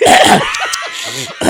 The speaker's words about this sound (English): So good. Super sniff.